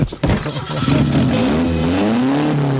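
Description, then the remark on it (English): A car engine cranks and catches with a sharp burst, then revs up loudly, its pitch climbing and holding in a steady roar. “as he's sitting in his car debating about whether or not he should go out.”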